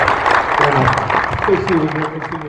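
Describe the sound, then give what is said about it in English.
A crowd applauds steadily for retired U.S. Army General Peter Chiarelli, dense clapping filling the whole stretch with voices calling out among it, fading slightly toward the end. “All right, big round of applause for Peter Chiarelli.”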